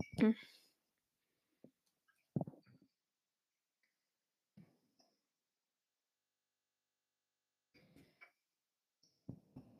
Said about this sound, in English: Shouldn't be typing when we're recording a podcast, but I'm just saying I tell them. So I wrote she's a domestic goddess, and then in brackets, not a question, just letting you know I tell no lies.